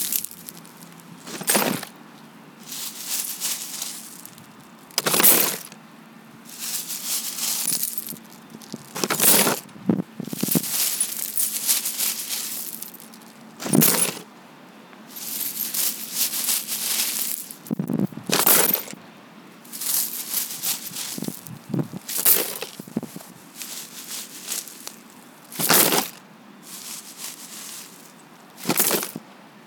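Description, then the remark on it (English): A shattered glass tabletop being scooped into a paper bag: repeated sharp crunching, clinking bursts of shards every few seconds, with scraping and rustling in between, fairly loud, no voices. “That was a shattered glass tabletop being scooped into a paper bag.”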